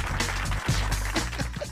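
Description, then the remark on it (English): A steady burst of clapping fills the whole clip, a dense wash of many hands at an even level, layered over a low, sustained musical bed; a round of applause on a morning radio show on Sunny 101.5 at 5:31. “How many people you know get a round of applause when they wake up in the morning?”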